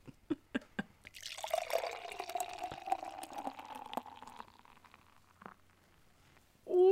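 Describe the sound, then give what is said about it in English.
A few sharp drips land, then a steady stream of beer spills and splashes for several seconds as it is accidentally poured onto a person's pants, before trailing off into scattered drops. “I just poured it into my pants.”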